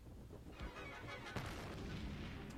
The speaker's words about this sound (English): Yeah, explosion. First unnecessary explosion of the season.